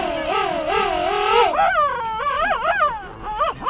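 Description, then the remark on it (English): A pair of king penguins standing face to face, heads tilted back and long bills pointed skyward, trumpeting together: loud warbling calls rising and falling in pitch, one voice at first, then two overlapping in a continuous, wavering duet with no talking. “A pair of king penguins stands face to face. They tilt their heads back, point their long bills skyward, and trumpet in unison.”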